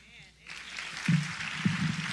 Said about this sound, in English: Can we give our Academic Resource Ministry another round of applause?